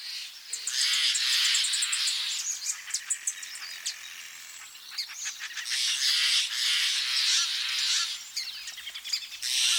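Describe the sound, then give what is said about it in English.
A busy outdoor dawn chorus of birds and other creatures calling and chirping at once in a valley along the Russian River north of San Francisco, with high twittering, squawks and insect-like trills layered over one another, steady and fairly loud throughout with no talking. “Ed Herman collected these calls of birds and other creatures that echo each morning through the valley”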